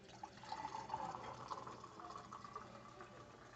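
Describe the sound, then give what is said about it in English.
Coffee pours steadily into a cup for a few seconds, a continuous watery trickle with a faintly rising tone, while soft background chatter murmurs underneath. “Do you want to refill on your coffee? Yes, please.”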